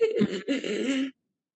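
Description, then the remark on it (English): A person imitates an infant's raspy, labored breathing as he struggles to breathe: two strained, rough breaths, a short one and then a longer drawn-out one, before cutting to silence. “And she heard him struggling to breathe, like that raspy.”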